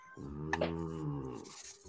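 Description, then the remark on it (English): A pet cat in heat lets out a single drawn-out, moaning yowl lasting nearly two seconds, fairly loud, with no talking over it. “Is that your cat”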